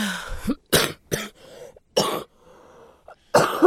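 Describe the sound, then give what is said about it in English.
A loud fit of harsh coughing from a woman: five or so raspy bursts in an uneven rhythm, separated by short gasping pauses and a bit of throat clearing, with no talking. “As she coughs up a lung.”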